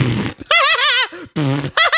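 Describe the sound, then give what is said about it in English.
A brief spoken phrase, then a voice imitates blowing raspberries in three loud, buzzy, wobbling bursts, the first long and wavering, the others shorter. “He just starts blowing raspberries,”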